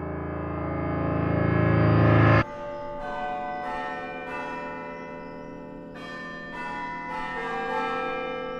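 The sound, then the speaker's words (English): Church bells ring out faintly in the distance, clanging a slow melody of an old church hymn, their tones overlapping and echoing with a long reverberant ring. After a loud opening swell, the strikes continue more softly, with no voices. “Church bells ring out faintly in the distance, clanging to the melody of an old church hymn I learned in my youth.”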